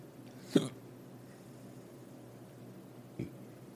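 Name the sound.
hiccups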